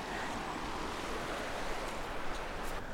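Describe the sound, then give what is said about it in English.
A steady, dense roar of the River Usk rushing in full spate fills the whole clip, broad and continuous like a swollen river in flood, with faint wind buffeting and no voices. “There's the little song of the Usk, just in full spate.”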